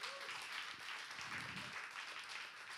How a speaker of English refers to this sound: And can we clap for that for my mom? Amen.